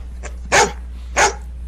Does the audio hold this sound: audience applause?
no